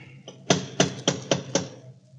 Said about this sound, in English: Go ahead and knock. Okay.